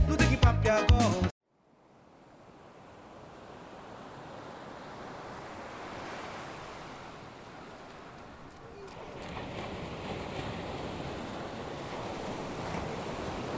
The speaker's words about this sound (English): Suddenly, we felt this refreshing sea breeze sweep off the ship canal. All the parched customers waiting in the beating sunlight enjoyed the relief of the cool maritime air